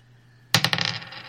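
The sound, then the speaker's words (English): Dice are rolled during a board game, clattering onto a hard surface in a sharp burst of several quick rattling impacts that bounce and settle over about a second, fairly loud, with no one speaking. “I'm going to use the large scarf, which allows me to re-roll a dice for only one sonic.”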